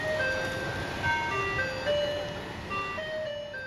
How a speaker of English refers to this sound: So you sit inside your house and you wait for Beethoven music to play from the local garbage truck.